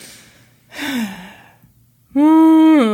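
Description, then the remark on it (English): A voice imitates whale calls: a breathy, falling moan, a pause, then a loud, sustained tonal wail that holds steady and bends downward at the end. “Are you making whale sounds now?”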